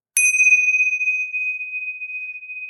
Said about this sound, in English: Well, that's the bell for the last call.